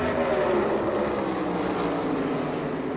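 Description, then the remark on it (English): A dense, steady roar of stock car engines, loud and continuous as the cars run flat out around a track in the final two laps of a race, with Bell getting to the inside for the lead; no voices. “And so, here they are, the final two laps of this race. There's the push. He gets to the inside.”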